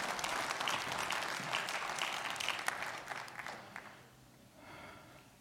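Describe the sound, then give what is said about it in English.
An audience claps steadily for the speaker's daughter in a dense burst of applause, holding strong for a few seconds before thinning out and fading, with a brief faint swell of clapping near the end. “Give a round of applause for my daughter”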